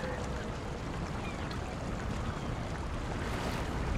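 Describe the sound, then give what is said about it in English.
Steady, dense rushing and splashing of water from fountains on a campus, with the skyline of early 25th-century San Francisco in view, on a hot day: a constant wash of sound with no breaks, filling the whole few seconds at an even loudness. “Those fountains are magnificent. They're very, very beautiful. You can hear the water here.”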